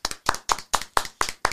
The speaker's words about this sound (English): So why don't we just welcome her in right now? Please give a warm round of applause with all your wettest tentacles to my girl,